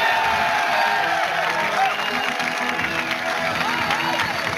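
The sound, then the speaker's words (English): An audience applauds and cheers loudly and continuously as contest winners are announced, dense clapping blending with scattered whoops and shouts throughout, no single voice standing out. “That was predetermined because the girl was already clapping before Robin said it.”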